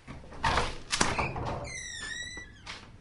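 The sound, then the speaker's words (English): A door groans open with a drawn-out, wavering creak, framed by a few dull knocks and thuds as it moves and bumps shut, with no talking. “An appropriately creaky door. Shut that behind us.”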